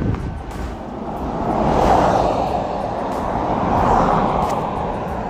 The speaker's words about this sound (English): Sometimes when you record, you pick up things. And you hear the fan. You hear the engines revving.